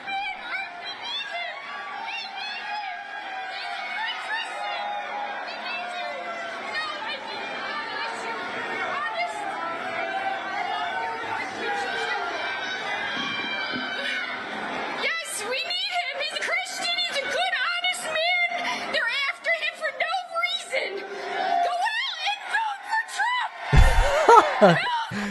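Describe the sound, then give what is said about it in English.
A large crowd at a rally boos Donald Trump in a dense, continuous roar of overlapping voices that swells louder in the final seconds, with sharp bursts of yelling near the end, while a woman on stage shouts "Vote Trump." “Just a complete bedlam. The crowd is all booing.”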